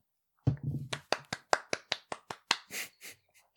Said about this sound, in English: That was me clapping, not wanking.